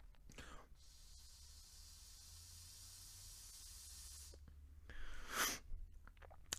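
Someone draws on a hookah, its water bubbling: a steady airy hiss with a low watery rumble for about four seconds, followed after a pause by a short, louder breathy gust.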